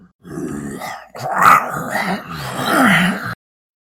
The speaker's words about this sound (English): coming from the other side of the door. I'm gonna try to pick that lock. Okay. Oh no. I hear a monster. Let's find out. Oh, okay, that's good. At least it's chained up.